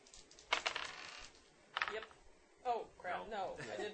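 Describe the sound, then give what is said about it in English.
Dice clatter across a tabletop in two short rattling bursts, a longer roll followed by a briefer one, as players make idea rolls, before people begin talking. “You can all make idea rolls.”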